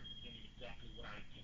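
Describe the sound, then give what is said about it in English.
A hotel alarm sounds over a phone line as a steady, thin, high-pitched electronic tone that runs throughout, faint and tinny, with muffled voices and line noise beneath it. “There goes your alarm.”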